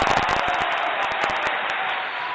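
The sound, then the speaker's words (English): Audience applause for the governor, Nigel Rabid, a dense wash of many hands clapping at a steady, fairly loud level, with sharper individual claps standing out at the start before it settles into an even roar. “Ladies and gentlemen, a little bit of a round of applause for the governor, Nigel Rabid.”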